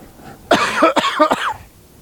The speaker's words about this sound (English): Excuse me, guys, I got a cough.